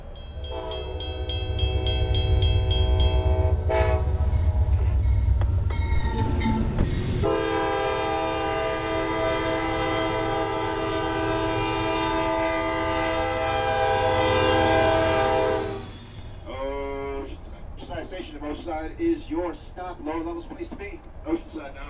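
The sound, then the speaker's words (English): A train sounds its horn in a long, loud, sustained blast over a deep rumble as it pulls out of Oceanside station, a railway interchange, then the noise eases and a person starts talking. “We're now pulling out of Oceanside.”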